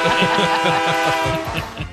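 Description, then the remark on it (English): A train horn sounds as one loud, steady blast lasting about two seconds, its sustained tone prominent, with a low rhythmic rumble underneath. “Train. Horn. Let's go.”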